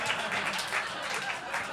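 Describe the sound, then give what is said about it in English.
An audience claps steadily, a dense, crackly wash of many hands sustained at a fairly even, moderate loudness throughout. “They're clapping. That's new.”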